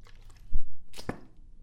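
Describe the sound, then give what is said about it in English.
A brief swallow of water from a cup, followed by the cup set down with a soft knock on a hard surface; short mouth and handling noises, no talking. “Let me get some water here.”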